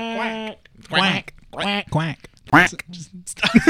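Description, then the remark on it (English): Five loud, nasal duck quacks, each a short honking burst separated by brief gaps in an irregular rhythm. “No, it's the quacking sound.”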